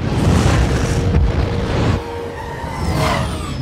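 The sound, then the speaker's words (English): Explosions in a superhero movie: loud, rumbling booms with heavy low-end roar fill the first two seconds, followed by a quieter stretch of crackling noise and a faint high whine near the end. “Things were exploding, people were yelling.”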